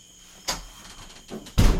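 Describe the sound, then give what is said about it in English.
A door slides and bumps shut: a brief scrape, then a softer rustle, and finally a heavy thud as it closes. No one speaks. “You want to close that door before we go for the bugs?”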